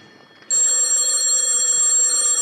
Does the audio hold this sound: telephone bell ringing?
yes